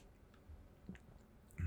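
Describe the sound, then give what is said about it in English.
Quiet swallowing sounds as someone gulps a drink after a workout while walking home from the gym, with a couple of soft wet gulps and a fuller one at the end, and no talking. “And don't mind the gulps.”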